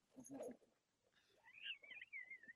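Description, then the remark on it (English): A dog whimpers in a thin, high-pitched whine that wavers up and down for about a second, preceded by a short, rough vocal burst, at moderate volume. “No, it was a dog.”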